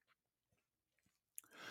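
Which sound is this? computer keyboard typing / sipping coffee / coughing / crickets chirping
sipping coffee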